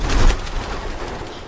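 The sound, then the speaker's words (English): A flock of birds bursts up out of a shaft into flight, a loud rush of flapping wings at the start that settles into a dense, steady fluttering. No one speaks. “And then the birds start to freak out the again. The birds shoot up out of the shaft.”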